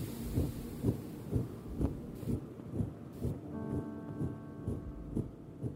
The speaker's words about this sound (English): But what I've been finding and is I've kind of like a fluttering noise. It's a noise almost like a little bit of water stuck in my ear or okay. It's kind of a movement in my ear.